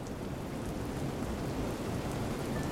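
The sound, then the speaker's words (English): Heavy rain pours steadily, a dense, unbroken hiss of drops beating hard against a window while the wind blows, with a low rumbling undertone and no voices. “One night, when the wind was blowing and the rain was beating hard upon her window, Hilda could hear the horn warning the sailors off the rocks.”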